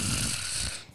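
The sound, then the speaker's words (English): A voice imitates a single snore, a raspy, rattling breath lasting just under a second before trailing off into quiet. “Bro, I be catching myself snoring.”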